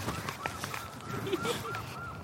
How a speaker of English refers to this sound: Seagulls. That's an intrepid seagull. We're quite a long way inland here. We got sunshine. We got seagulls. It's like a day at the beach here.